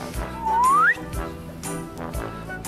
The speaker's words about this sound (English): The slide whistle.